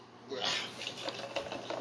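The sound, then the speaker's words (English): Blue Mountain Dew Voltage soda pours into a glass with a steady fizzy hiss, broken by small irregular splashes and crackles of bubbles, moderately quiet and lasting about two seconds. “It pours beautifully.”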